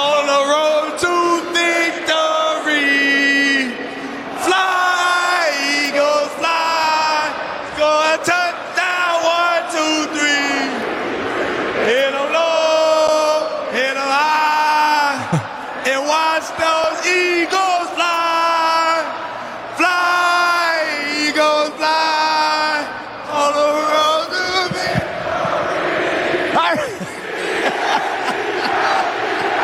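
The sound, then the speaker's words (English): A crowd loudly sings a football team's fight song together, voices sustained and chant-like with a few whoops, carrying on without a break for the whole stretch. “he led Jalen Hurts into singing Fly, Eagles, Fly”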